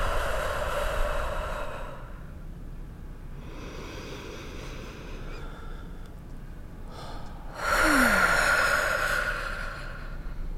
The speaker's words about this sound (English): Darn it. And now I miss the snoring. It's too quiet.